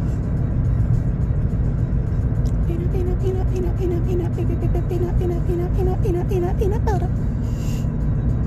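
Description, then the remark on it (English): Steady low rumble and road noise fill the cabin of a moving car throughout, with a wavering, melodic voice-like tone rising over it for several seconds in the middle, as the driver dances in the seat to music. “And so I'm shaking my booty in my car the best I can.”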